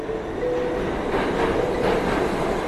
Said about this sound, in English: A year ago, my day would start with a train ride alongside thousands of fellow commuters into Manhattan.